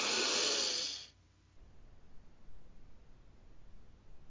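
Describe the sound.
A voice imitates a man's deep sniff: one long, loud, breathy inhale lasting about a second, then quiet background noise for the rest.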